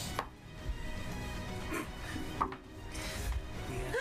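Physical dice rattle and tumble across a tabletop as initiative is rolled in a tabletop game, a few sharp clicks and knocks scattered over a soft, steady background with no one talking.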